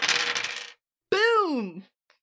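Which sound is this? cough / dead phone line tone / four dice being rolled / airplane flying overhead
four dice being rolled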